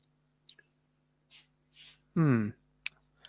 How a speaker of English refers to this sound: The pen is clicking. It's clicking.